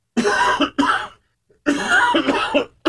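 A person coughs several times in close succession, loud harsh bursts separated by brief pauses, with no talking.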